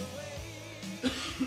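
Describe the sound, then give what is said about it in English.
A couple of short, muffled coughs about a third of a second apart, fairly soft, over a low background hum with no one talking. “Sorry, had to cough.”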